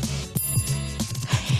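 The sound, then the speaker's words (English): A bright, ringing notification bell sound effect chimes in quick repeated bursts over a low musical hum, clear with no voices. “If you haven't already, make sure you like, subscribe, and you hit that notification bell.”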